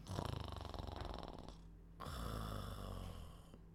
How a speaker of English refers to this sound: In half a minute, she was snoring.